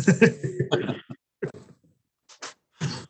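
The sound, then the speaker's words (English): A fairly loud cough: a rough cluster of hacking bursts, then a few shorter, sharper coughs with brief silences between them, no talking. “You need a cough. You need a cough button.”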